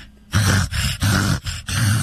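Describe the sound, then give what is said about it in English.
A person vocally imitates a dog's reverse sneezing: four rapid, loud, snorting inhaled grunts in a steady rhythm, each harsh and throaty with a low rumbling core. “And when you say reverse coughing, we're referencing reverse sneezing, the sound that's like a...”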